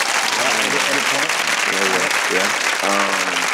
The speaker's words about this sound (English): Yeah, promoted. Start tomorrow. Congrats. So... Let's get that round of applause.